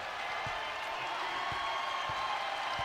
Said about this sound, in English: Crowd cheering this team on. The clock will wind down, and Middle Tennessee is going to join the ranks of 20 win teams in 2022.